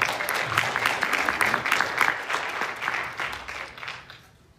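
An audience claps steadily for about four seconds, a dense patter of many hands at an even level, before the applause quickly thins and fades out.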